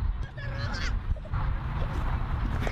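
Harsh, honking fowl squawks ring out in a quick burst near the start, loud, over a rumbling, noisy background with faint voices.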